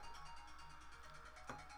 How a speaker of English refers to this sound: And ignore that phone. That's my work phone, but I'm on leave.